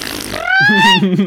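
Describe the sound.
A voice imitates the cartoon character Shaggy's fart, which ends in a 'meep' when Daphne startles him: a low, buzzy sputter with a short rising squeaky tone, loud, lasting about a second with no other sounds around it.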